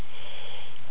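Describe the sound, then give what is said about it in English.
A single sneeze, heard as a loud, breathy, hissing rush of air that holds steady for about a second, with no voices around it. “Bless you”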